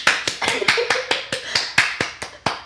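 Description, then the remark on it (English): Applause given as an audience vote, made of about a dozen sharp, evenly spaced claps at a steady quick rhythm, sounding like a single pair of hands rather than a full crowd, with no talking. “Let's have the audience decide. But applaud respect- if you think I'm right.”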